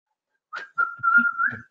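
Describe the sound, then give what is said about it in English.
A person whistles a short tune, a steady wavering melody with slight pitch bends, slightly off-key, lasting under two seconds with no talking. “Can we hear the whistling?”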